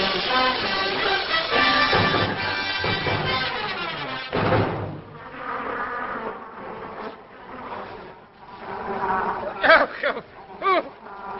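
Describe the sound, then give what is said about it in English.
Horse flies buzz in a loud, layered drone of wavering, high-pitched tones that swell and dip, with a brief dull thump partway through and sharper buzzing bursts near the end. “Get those horse flies out of here.”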